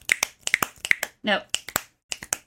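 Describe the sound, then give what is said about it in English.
Sharp finger snaps alternate with claps in quick snap-clap pairs, five pairs in a loose rhythm, interrupted once by a short vocal sound. “I recommend listeners, please do the walk and snap, clap.”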